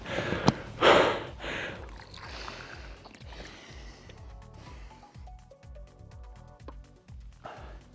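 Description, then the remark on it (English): Heavy, gasping breaths after a one-minute exercise interval, loudest at the start and returning near the end, over a steady low rhythmic whooshing that runs throughout. “and the breathing rate for me is right up.”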